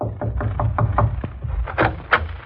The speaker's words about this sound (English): Below the deck of the troop transport Dorchester, four chaplains are sitting in officers' quarters. Then, suddenly, there's a knock on the door.